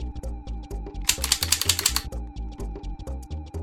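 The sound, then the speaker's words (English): A slightly dirty plastic NES toy light gun, model number NES-005, rattles as it is handled: a steady run of small clicks, with a denser, louder burst of rattling in the middle, and no voices. “Got a little rattle going on in there.”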